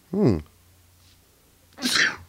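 A single loud sneeze: a short voiced gasp, a brief pause, then a sharp breathy burst. No talking around it.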